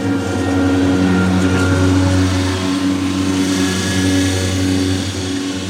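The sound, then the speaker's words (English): A lawnmower engine runs steadily and loudly for several seconds, its droning hum holding a low, buzzing pitch with slight wavering. No one speaks over it. “We got the lawnmower going.”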